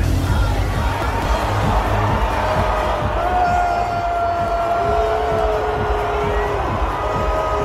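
A large crowd boos loudly and continuously at a woman shown on the big screen chugging down a beer, a dense wash of voices with long, drawn-out low tones rising above the din for the whole stretch.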